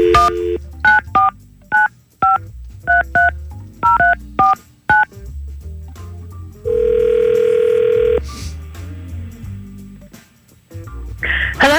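A rapid series of about a dozen touch-tone keypad beeps as Y100 radio hosts dial a phone number, followed by a single long, steady ringing tone on the line, loud with no one talking.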